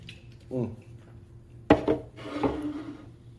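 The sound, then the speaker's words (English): A sip from a can of pineapple mango tequila drink: a sharp metallic clack of the can, then a soft, airy slurp and swallow lasting a second or so, with a brief low hum before it. “This pineapple mango, though, I'm gonna take a sip from the can as well.”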